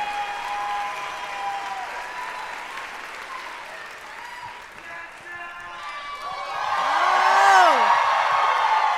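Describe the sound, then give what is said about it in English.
A live crowd applauds steadily with whoops and cheers as White House Press Secretary Jen Psaki is welcomed to the stage, the clapping swelling louder toward the end as excited voices shout over it. “You have some fans. That may be my team. I gave them like $100 each to cheer aloud.”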